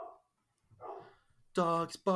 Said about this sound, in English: Dogs barking, motherfucking dogs barking in the background. There you go. That's the song.